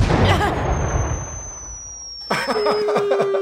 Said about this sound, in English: I just heard a car drive by that sounded like a missile.